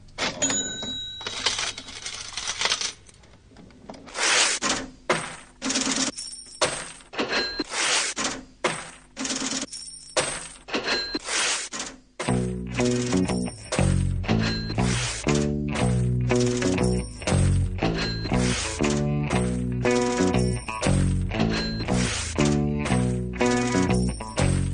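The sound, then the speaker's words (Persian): Cash register clangs and jingling coins repeat in a steady rhythmic loop, loud; about halfway through, a deep rhythmic bassline joins beneath the metallic clatter. “همه این پولا، این پولا رو میبینی سر و صدا این سکه ها و این پولا”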